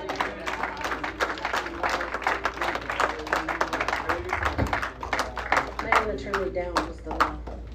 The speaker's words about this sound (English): And everybody give the Lord a hand clap.